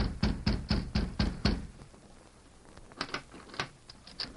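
A rapid series of about six firm, evenly spaced knocks on a hotel room door, made by Tonto at the Lone Ranger's signal, followed after a pause by several fainter, scattered taps. No voices.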